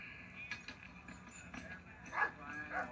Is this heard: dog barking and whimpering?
yes